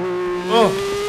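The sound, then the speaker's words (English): A race car engine, heard from an in-car camera, roars with a steady, buzzing drone, briefly rising and falling in pitch midway as it shifts through a rev, then holding its note. “Oh, in-car cam.”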